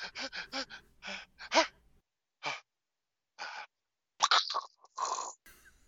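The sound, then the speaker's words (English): A person imitates the heavy breathing bit that Joe Morton does in Terminator 2: a quick run of short, ragged gasps, then a few isolated breaths separated by pauses, ending in a longer rasping exhale. “And two, we talked about how we love Joe Morton, but I forgot to mention he does the heavy breathing bit from Terminator 2 at one point when the parademon's in his fucking apartment.”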